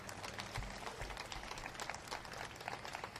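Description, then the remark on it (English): An audience applauds the bicycle company Trek, a dense, even patter of many hands lasting a few seconds at a fairly soft, constant level with no voices over it. “At the local level, yeah, give them a round of applause for that.”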